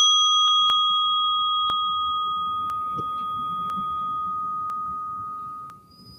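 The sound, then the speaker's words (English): A meditation bell is struck once and rings out clearly, its bright overtones hanging and slowly fading for several seconds, with faint regular clicks and a soft low background murmur. “Oh, hearing the bell gives us all a chance to just come back to our breathing, bring the mind and body together, calm the soul.”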